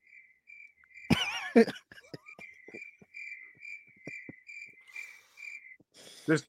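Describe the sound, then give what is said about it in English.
Crickets chirp steadily in a high, shrill, pulsing rhythm that runs the whole time, broken by a few brief, louder rustling or clattering bursts. No one speaks. “I was expecting a Fire Canada at the end of that from the Crickets.”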